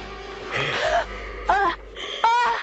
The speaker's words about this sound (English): Let's listen to Linda's strangling again, because over the phone, Lori can't even tell which is which. She also can't even tell that those gasps are coming from Linda, not Annie.